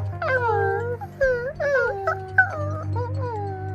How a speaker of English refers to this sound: All three were looking at the sound bouncer and whining plaintive little whines.